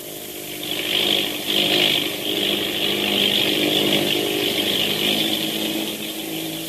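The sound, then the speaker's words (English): A steady, buzzing propeller-plane engine drones on without a break, a few minutes before landing with the lights of Newark in view, its rough hum holding an even loudness with slight swells, and no voices over it. “Another few minutes, we'll land.”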